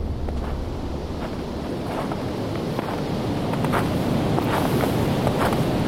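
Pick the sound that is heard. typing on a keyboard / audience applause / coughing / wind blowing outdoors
wind blowing outdoors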